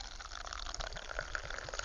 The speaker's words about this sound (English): So just pour myself a cup of coffee here. I'll, for the benefit of the listeners, I'm going to see if I can do it quite close to the microphone.